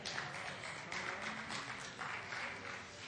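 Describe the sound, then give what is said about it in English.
An audience claps its hands at a 9 a.m. service in a steady, dense burst of applause lasting about three seconds, with no one speaking over it. “That's a good hand clap for 9 a.m.”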